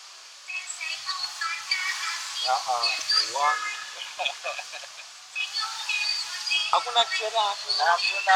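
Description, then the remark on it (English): A woman sings wavering, melismatic phrases with a reverberant tail and no auto-tune, sounding thin and tinny as if played through a small speaker, with faint hiss underneath. “Bro, your voice, though, it's amazing. The reverb, you can hear it nicely, yeah?”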